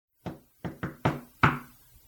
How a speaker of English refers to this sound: Oh, I don't even get to do my funny knock.